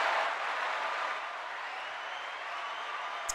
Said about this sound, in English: We, as a community, all right, stop cheering.